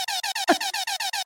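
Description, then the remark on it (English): A rapid string of loud, blaring air horn blasts, about eight short bursts in quick rhythmic succession, with a brief dull thump partway through and no talking. “A round of applause and some air horns for Rainy.”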